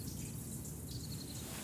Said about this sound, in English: water that. Okay, yeah, so just to make it a little bit moist.